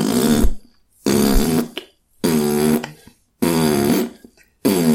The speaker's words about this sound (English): Yeah, well, she wanted to change the bong sound to fart noises, though, didn't she? Yeah, she did. Like, you know, rather than bong, bong, bong, she wanted to get rid of that completely and just have